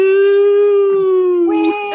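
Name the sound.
dog howling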